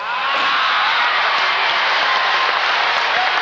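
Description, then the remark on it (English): A crowd applauds and cheers steadily for people waving on a stage, standing on their feet and waving back. It is a dense wash of clapping with scattered shouts, loud and continuous throughout without any clear speech. “People are waving, standing on their feet, cheering.”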